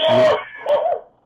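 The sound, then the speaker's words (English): A loud, explosive sneeze bursts out in two quick parts, a sharp first blast followed by a shorter second one, with no talking around it. “Bless you.”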